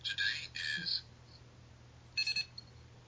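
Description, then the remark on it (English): Two longer electronic tones sound first, then after a pause a quick run of three short, high-pitched beeps from a wristwatch's battery indicator, showing the battery is full, fairly soft, with no talking. “So if I hit that button again, you will hear three beeps.”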